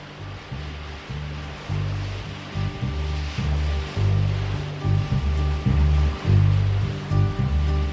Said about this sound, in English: He added the sounds of seagulls and waves crashing into the background